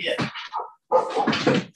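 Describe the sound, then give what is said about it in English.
A dog gives a couple of short, loud vocal bursts, rough barks or yelps with a mid-pitched tone, separated by a brief pause, with no talking over them. “I hear the dog.”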